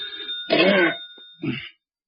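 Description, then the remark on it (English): A telephone bell rings in two short, loud bursts, the second briefer than the first, with a thin steady tone lingering between them. “Oh, dear, who moved that phone?”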